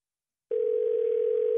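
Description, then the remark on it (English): After a brief silence, a telephone tone begins: a steady, unbroken mid-pitched hum that holds at an even loudness until the end, with no voices. “Okay, so we're going to call him now, and this is going to be all you, okay?”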